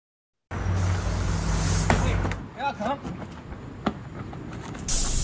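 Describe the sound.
A packed bus idles with a low, steady engine rumble, then a sharp pneumatic hiss of air brakes, with brief muffled voices in the middle and another loud hiss at the end.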